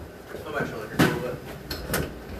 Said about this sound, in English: Come on. Open the door. Turn the handle and pull. You can turn it one way. It doesn't work. Good, you know how that door handle works.